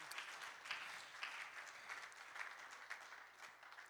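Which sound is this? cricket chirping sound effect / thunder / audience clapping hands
audience clapping hands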